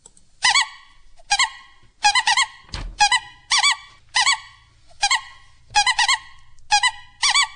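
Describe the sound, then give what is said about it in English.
A squeaky horn honks repeatedly in short bursts, about ten loud, nasal squawks in an uneven rhythm with brief pauses between them, and no voices. “We're going to start out with a squeaky horn.”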